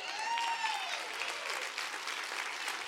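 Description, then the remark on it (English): An audience claps steadily for about three seconds, a modest, even patter of many hands, with a brief rising-and-falling whistle-like tone early on. “That ain't the thunderous a clap I thought I was going to get.”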